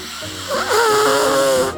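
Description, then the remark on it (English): A voice mimics a loud nose blow into tissues: one drawn-out, honking nasal blast with a wavering, buzzy tone and breathy hiss, lasting just over a second. “And he takes a package of tissues out and blows his nose really loud.”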